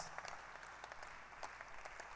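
A church audience applauds two new converts with dense, overlapping hand claps, a steady crackling wash of many people clapping at once with scattered sharper claps standing out, and no voices heard.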